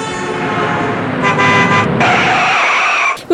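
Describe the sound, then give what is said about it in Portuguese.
A car horn blares loudly and continuously for about three seconds as the car approaches and hits a young female pedestrian on a street outside a hospital, its tone shifting partway through over engine noise, then cuts off abruptly. “Chama o socorro lá no hospital, o carro pegou a perna da menina.”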